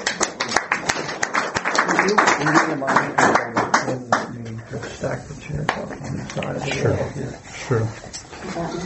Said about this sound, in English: One more round of applause for our panelists, too.